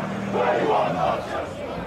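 A large crowd of Chelsea football fans blocking traffic outside their home stadium in West London in 2021, shouting and chanting in protest against the formation of a new European Super League, a dense roar of many voices with rising, overlapping yells holding steady throughout.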